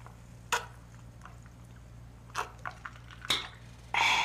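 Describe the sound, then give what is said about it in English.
Someone sips orange seltzer soda poured into a cup: a few short slurping and liquid sounds over a low steady hum, ending in a sustained carbonated fizz. “So she's pouring the cup, and it's got visual effects. It's beautiful. And now she's drinking it.”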